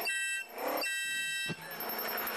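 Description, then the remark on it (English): A shrill, buzzy electronic horn from an electric supermarket cart sounds in a steady, loud blare, briefly dipping twice before continuing, with no one speaking. “That's the horn on the drive carriages at the supermarket.”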